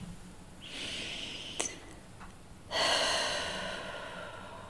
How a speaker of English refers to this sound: So let's just take a breath together, first of all.